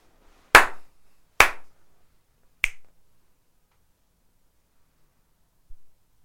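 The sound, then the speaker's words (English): Two loud, sharp slaps about a second apart, followed by a single crisp finger snap, with no talking. A faint soft tap comes a few seconds later. “Just a hard two slaps and a hard one snap.”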